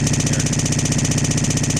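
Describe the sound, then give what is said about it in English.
A car engine runs at a steady idle, its low, even throb pulsing rapidly and loudly with a faint rattly vibration, with no voices over it. “It'll turn over.”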